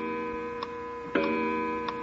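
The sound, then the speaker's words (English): An old wind-up clock, wound by pulling a chain that raises a weight, ticks: a few crisp, distinct ticks spaced out over a steady low humming tone, moderately quiet, with no one speaking. “This isn't a bad old clock, huh?”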